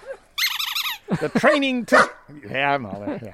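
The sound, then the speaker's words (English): A detection dog in scent training to find COVID in sweat samples barks and yelps excitedly in a few short bursts, with a high whining note early on and a person's voice joining near the end. “The training took anywhere between 3 to 6 weeks, depending on the dog's experiences with odor detection.”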